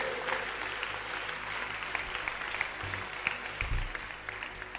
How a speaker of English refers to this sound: Thy gates. Clap your hands for the gates.